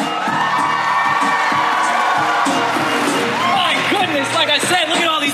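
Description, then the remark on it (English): A large convention crowd at a Death Note cast panel erupts in loud, sustained cheering, with high whoops and shrieks rising above a dense wall of voices and applause-like noise, continuous throughout. “Make some noise!”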